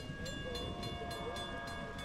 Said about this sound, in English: Ere long the train came with loud rumbling din, and not to detain it, we quickly got in.